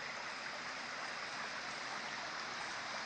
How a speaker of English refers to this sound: No, it really is a mountain stream of pure, fresh, refreshing, necessary water.